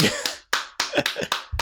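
Short burst of applause: hands clap in sharp, irregular bursts, a handful of crisp smacks overlapping at moderate loudness, with no voices over them.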